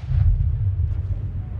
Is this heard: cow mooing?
no